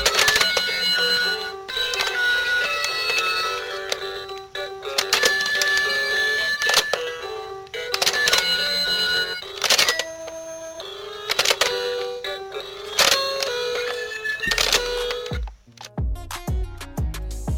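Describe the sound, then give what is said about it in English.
A pig bangs on a toy piano, producing clangy, tinny clusters of notes in uneven bursts with short gaps, mostly mid-to-high pitched and fairly loud, with no one talking. “It's a pig playing the piano, everybody.”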